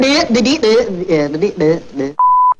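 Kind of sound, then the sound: sound effect, censor bleep sound effect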